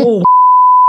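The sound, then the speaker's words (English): A brief spoken syllable is cut off by a loud, steady pure-tone bleep that holds for most of a second, the classic censor beep masking a word. “I wish I didn't have to make you beep that, because it's real good.”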